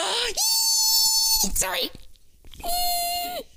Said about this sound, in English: That was the sound of my tea kettle going on.